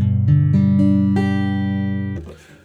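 Notes of a G chord plucked one after another, about five onsets stacking into a sustained, ringing chord that holds for two seconds before cutting off into a brief noisy rustle.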